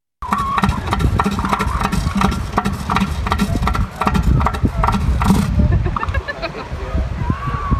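A loud elephant seal mating call: a deep, guttural bellow made of rapid, drum-like pulses that repeat steadily for several seconds, with no one talking.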